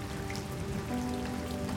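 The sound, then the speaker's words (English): Steady rain pattering down outside on a Friday afternoon, a dense continuous hiss of drops with a faint low hum underneath, heard from just inside a propped-open doorway. “After the interview, I prop open my door on this Friday afternoon to listen to the rain.”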